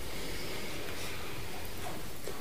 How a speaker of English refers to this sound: So let's breathe together as we settle more, we'll kind of dive deeper and wider into this practice. So let's breathe in together.